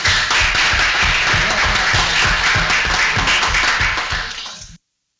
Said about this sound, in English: Thank you, and applause for them.